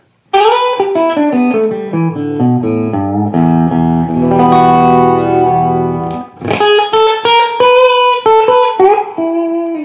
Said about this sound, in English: In other words, I don't want it to be real pingy sounding. And that's a tough thing on a Tele. And this guitar has that kind of fatness in spades, as it were.